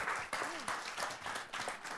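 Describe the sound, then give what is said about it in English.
A crowd applauds steadily, many hands clapping in a dense, continuous wash of sound for about two seconds, with a brief rising-and-falling voice or whoop heard faintly early on. “Come on, clap your hands, guys.”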